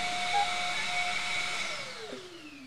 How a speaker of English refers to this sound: Sorry, I thought the best way to explain was just by doing, and the vacuum just happens to be right next to me.